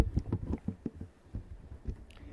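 A rapid, steady run of muffled whooshing thumps, an unborn child's heartbeat at around 13 weeks on an ultrasound monitor, pulsing several times a second at moderate volume with a faint background hiss and no voices.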